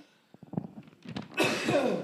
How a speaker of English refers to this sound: Just just clearing my throat. After the Hawk showed up. Yeah, that was an intense sound after you said the Hawk.